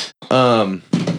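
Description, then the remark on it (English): A single loud sneeze: a short breathy intake, a drawn-out voiced 'ah,' then a sharp burst of air as it ends. “Bless you.”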